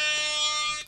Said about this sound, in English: Yeah, that's true, because what do I have on my phone? But... Here we go. Air horn.